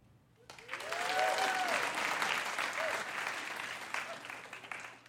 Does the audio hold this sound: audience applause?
yes